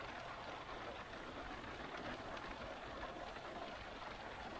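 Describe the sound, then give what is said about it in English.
Soft, steady patter of light rain from isolated rain clouds drifting overhead after a sunny, still day, a gentle continuous hiss with faint scattered droplet ticks, fairly quiet and even throughout with no voices. “A few moments ago, some isolated rain clouds drifted overhead and began sprinkling delicate droplets of rain.”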